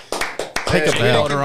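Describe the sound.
A brief round of applause: four sharp, loud claps at an uneven pace, then a person starts talking over the last of them.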